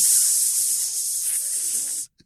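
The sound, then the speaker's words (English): A steady, loud hiss of steam rushing from a nozzle with someone's head under it, bright and high-pitched, holding constant for about two seconds before cutting off abruptly, followed by a tiny click. “Steam! Get out of my mouth, steam!”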